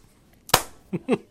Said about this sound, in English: Slow claps.